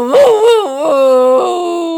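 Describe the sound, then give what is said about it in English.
Journey, a dog, howls over a video call in a long, sustained, singing way, its pitch wavering and sliding between notes almost like a tune. The loud, continuous wail runs for two seconds with no talking. “I call out to her, "Sing me the Journey song!" And she does.”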